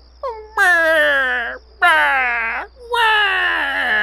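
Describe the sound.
A voice imitates a baby crying with three loud, drawn-out wails, each starting high and sliding down in pitch, separated by short gasping breaks.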